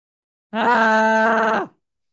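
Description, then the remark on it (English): A single loud, sustained human scream holds a steady pitch for about a second, then trails downward and cuts off, with no other sounds around it. “Ah, yes, much screaming.”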